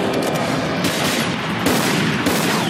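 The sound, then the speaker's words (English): Loud, dense video game gunfire: overlapping automatic bursts and sharp cracks fire almost nonstop over a harsh, noisy roar, with a few heavier shots standing out. No one speaks. “When bullets break down thick ass chains, just snap it.”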